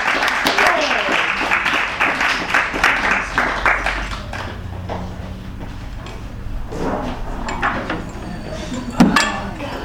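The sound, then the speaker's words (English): The audience at a Skylight Books author reading applauds, dense overlapping clapping that swells early and then thins out, with murmuring voices and scattered claps continuing underneath and a sharp knock near the end. “So one more round of applause, you guys.”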